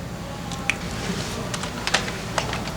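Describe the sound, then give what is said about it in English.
A few scattered clicks of keys being pressed on a computer keyboard, irregular and fairly quiet, over a low steady background hum with no one speaking. “No, just use the keyboard.”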